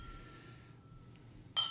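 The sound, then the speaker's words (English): A single bright clink of glasses of 18-year-old Talisker whisky from the Isle of Skye touching in a toast, ringing briefly after a quiet stretch of low background hum with no talking. “So raise your glass. Cheers to Jesus. Cheers.”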